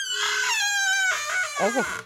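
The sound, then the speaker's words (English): A squeaky door hinge lets out one long, high-pitched creak for about two seconds, wavering in tone and sliding lower in a final groan. It is fairly loud, with no talking. “Yeah, you need some WD-40 on that door.”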